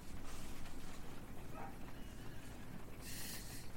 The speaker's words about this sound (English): Why is he barking at the rain?